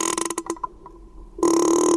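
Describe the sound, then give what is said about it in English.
A young female sperm whale's creaking call underwater, used to communicate and socialize: a burst of rapid clicks, a brief quieter lull, then a loud, sustained, low buzzing creak like a door hinge, with no talking. “She made a sound like a creaking door hinge. It's one of the ways whales communicate and socialize.”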